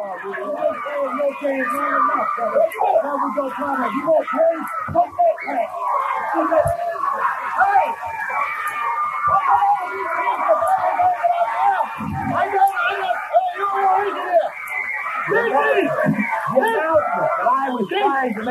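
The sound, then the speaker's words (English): A loud, constant roar from a wrestling studio crowd fills the whole stretch, dense with overlapping cheering and yelling, while several commentators shout and try to talk over the din. “trying to talk and scream above the roar of this crowd”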